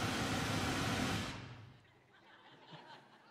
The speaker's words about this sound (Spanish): El ruido blanco está diseñado para que usted pueda camuflajear otros sonidos. Y mientras yo sigo hablando con ustedes, quizá ustedes dejan un momento, ya no me pueden escuchar bien, porque el ruido blanco no deja que mi voz.